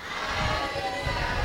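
A crowd of teenagers shouts hallelujah together in a sustained, dense roar that holds steady for about a second and a half, with no single voice standing out.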